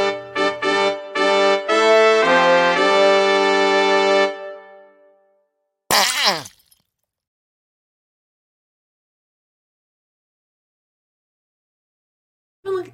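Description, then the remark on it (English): A short brassy jingle of stepped, horn-like notes fades out, then after a pause a single loud, wet fart sound effect sputters briefly, followed by silence. “We're keeping the fart noise in.”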